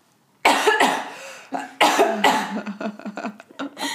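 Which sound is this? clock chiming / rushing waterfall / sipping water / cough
cough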